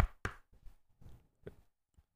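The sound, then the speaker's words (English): A few sharp knocks on a door, irregular and spaced out, with a couple of quieter taps between the louder raps and no talking. “Is there someone at the door?”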